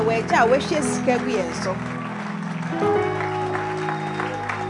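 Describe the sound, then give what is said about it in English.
An audience in a hall claps in a loose, steady patter beneath loud, sustained voices and tones that dominate the mix, the clapping fairly thin and somewhat buried throughout. “Your clapping is not good.”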